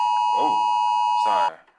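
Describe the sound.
A phone emergency alert tone sounds: a loud, steady, high electronic drone that holds for about a second and a half before cutting off, with voices talking over it.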